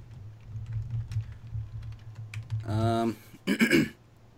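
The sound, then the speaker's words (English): Soft, irregular clicking of someone typing on a computer keyboard over a low hum, then two short bursts of a voice near the end. “I'm kind of like trying over there typing.”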